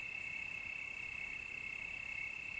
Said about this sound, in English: extended episode with the nature sounds that I record up here at my cabin in a long time, so this is an extended episode with the sound of crickets in the background. It'll go on for a while after the end of the story to help you fall deeply asleep.